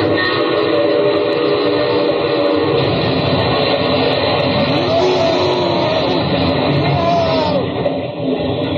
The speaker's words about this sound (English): That's about the noisiest crash that's ever been on radio.